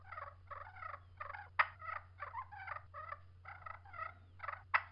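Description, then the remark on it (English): A purr pot turkey call played with rolling, fluttering purrs, repeated in quick bursts with a few sharper clucks mixed in, clear over a steady low hum. No one speaks. “I mean, I know it's a purr pot, but some of these purrs are ridiculous.”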